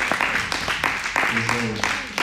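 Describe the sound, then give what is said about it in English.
Children and adults in a church audience clap their hands in praise in a steady, quick rhythm, the crisp claps running throughout over a murmur of voices, with a brief low sung or hummed tone partway through. “That's a beautiful sight to see the kids clap their hands and praise the Lord with the adult.”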